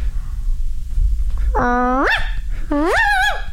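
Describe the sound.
A person imitates a small yappy dog, picturing a white Bichon, letting out two high-pitched, rising yips in quick succession, fairly loud over a low background rumble.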